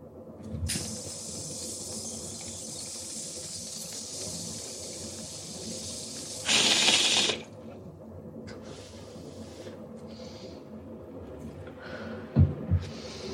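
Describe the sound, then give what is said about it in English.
A lighter is flicked to light a bowl and hisses steadily for several seconds, swelling into a louder rush near the end, followed by a couple of soft knocks. Nobody speaks. “You ever melt an acrylic nail trying to light a fucking bowl?”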